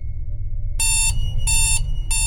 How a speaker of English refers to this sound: The alarm sounds off loudly in my room, the noise echoing down the hall towards me.